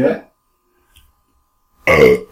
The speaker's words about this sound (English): Clearing your throat. Excuse me. My throat's already fucked. I'm sick.